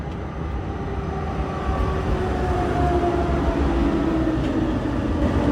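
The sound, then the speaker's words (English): Steady rumbling running noise inside a moving Danish train, a dense low roar with faint whining tones drifting above it, continuous and fairly loud with no one talking. “That's quite enough from me on this beautiful Danish train, a cut above the German variety.”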